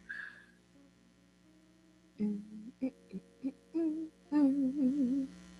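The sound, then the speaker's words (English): A person hums a short, wavering tune in several brief bursts after a couple of seconds of near silence, moderately loud, with a faint steady electrical hum underneath. “Well, Eddie thinks I'm going to hum for you guys.”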